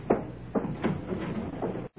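A front door being opened on a warm evening, with a series of several clunks and rattles from the latch and frame in quick succession, then a brief silence. No one speaks.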